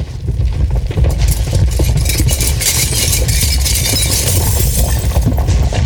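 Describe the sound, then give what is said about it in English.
A loud, continuous earthquake rumble shakes a prison as the cell doors creak open, deep low roaring mixed with rattling, cracking and crumbling debris for about six seconds, with no voices. “The prison shook with the earthquake, and all the prison doors of each cell creaked open”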